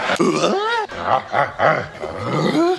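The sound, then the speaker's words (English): A comedic 'Tim the Tool Man' sound effect button: a man's voice letting out a string of loud, throaty grunting roars, rising and falling in quick succession for a few seconds, prominent with no other talk. “It gave me a chance, though, to hit my Tim the Tool Man.”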